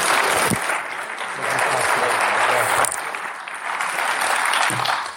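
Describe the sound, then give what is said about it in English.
A church audience applauds to welcome a reverend as guest speaker, steadily for about five seconds, a dense, continuous wash of many hands clapping at an even loudness, with a few sharper claps standing out. “If we'll give him a applause today as he comes and speaks our hearts today.”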